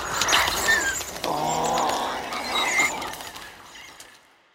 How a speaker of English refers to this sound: But in this case, you're choosing higher pitch sounds, bird sounds, and even taking pitched up lions so that you don't have any more of that big weighted growl. You just have these unique squeaks and squeals.